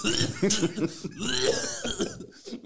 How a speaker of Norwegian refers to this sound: Da skulle jeg skikkelig ønske jeg hadde sånn skilt hvor det så, jeg har akkurat hatt korona. Det derfor jeg hoster.